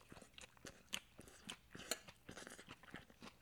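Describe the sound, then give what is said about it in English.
Crisp crunching as someone chews salad eaten with a fork from a plate, with a steady run of wet, crackly bites and jaw movements over a few seconds and no talking. “I keep thinking today should be the episode that is just all chewing.”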